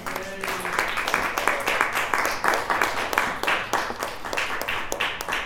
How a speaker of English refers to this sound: A big round of applause to Alan Catlin, everybody.